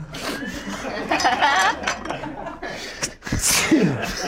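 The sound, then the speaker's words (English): A single sharp sneeze from someone who is allergic to something bursts out near the end, loud and breathy, over a busy background of soft clinks, rustling and murmured voices. “Bless you. I'm allergic to something today.”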